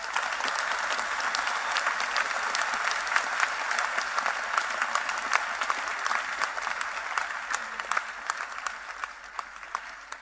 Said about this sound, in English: Amen. Give the Lord a wonderful clap of hands.